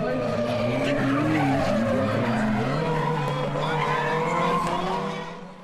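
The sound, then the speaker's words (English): On a drift course, a car slides sideways and runs its back end through a box. Its tires squeal loudly and continuously, the screech wavering in pitch over a roaring engine and easing off at the very end. “Then you come around and you switch back the other direction, and you run the back of your car through this box, which the lads will demonstrate here, hopefully.”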